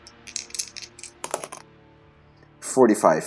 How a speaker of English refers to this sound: Call high or low. I'm gonna leave this to the dice because I can't decide.